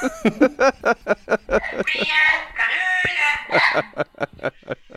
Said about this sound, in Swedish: Ja, det är en jävla pratande papegoja som älskar Luleå hockey.